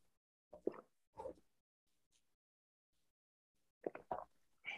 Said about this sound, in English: Let me take a moment to take a sip of coffee because it's coffee time. Cheers.